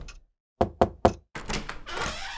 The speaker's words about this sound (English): No, sir. I've knocked on your door, sir, because the men are here to kill you, sir.